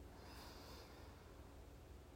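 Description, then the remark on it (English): A single deep breath drawn in through the nose during a grounding breathing exercise, a soft airy hiss that swells early and then trails off, quiet with no talking. “Inhale and exhale.”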